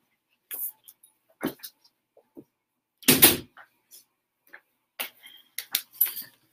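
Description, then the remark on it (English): A door that a dog had opened is pushed shut with a solid thump near the middle, to keep outside noise out, surrounded by several lighter clicks and knocks of handling. No one speaks. “My dog opened the door, and I didn't want I want all the outside noise coming through the door, so I had to go do that real quick.”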